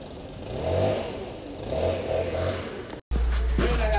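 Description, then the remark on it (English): A leaf blower engine revs loudly in repeated surges, its buzzy pitch rising and falling, then cuts off abruptly before resuming as a steadier, lower drone. “Then you're really milking it with that leaf blower.”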